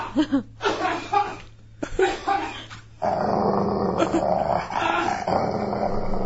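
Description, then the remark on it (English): A dog growls loudly, first in short rough bursts, then in a sustained, rumbling snarl that fills the last few seconds. Some laughter may be mixed in. “No! Bad dog!”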